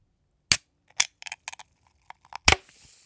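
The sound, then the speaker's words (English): A can of vodka soda being opened: a few sharp clicks and small taps at the tab, then a loud crack followed by a soft, fizzing hiss of bubbles that fades out. No one speaks. “I really hope you got a little bit of that, like, bubbling too, because that was pretty satisfying, if I do say so myself.”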